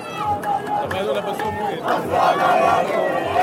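A massive crowd in Ramallah after dark cheers and shouts in a dense, continuous roar as released teenage prisoners arrive and are carried on shoulders, voices rising in excited bursts and chant-like calls that swell louder toward the end.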